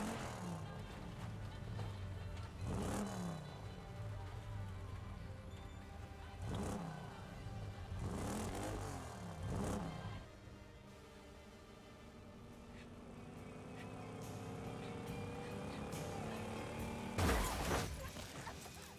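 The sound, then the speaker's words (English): A car engine turns over and sputters in repeated bursts, cranking several times without catching, with a low mechanical drone underneath and a final loud burst near the end. “Oh God, the whole car won't start.”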